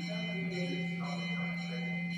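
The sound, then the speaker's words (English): A bell rings continuously and steadily, its bright metallic tones sustained throughout at a moderate level, with a faint murmur of background noise underneath. “Is it aarti or what? It will continue like this? Or is it a bell for me to keep my mouth shut?”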